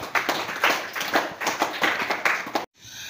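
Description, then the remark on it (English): A group in a class claps for a student who tried, in a steady, fairly loud rhythm for a couple of seconds, bright sharp slaps landing about twice a second, before the applause cuts off abruptly. “Clap for him.”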